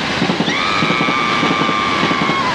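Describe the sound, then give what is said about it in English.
Another train passes a moving train, roaring loudly throughout, with a rhythmic clattering rumble and a sustained high-pitched squeal rising in about halfway through and holding steady. “That other train's making so much noise.”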